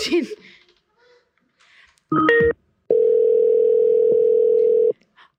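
A phone call to Toronto rings out: a brief burst of mixed dialing tones, a short pause, then one steady, loud, mid-pitched ringing tone lasting about two seconds. Faint talk comes before it.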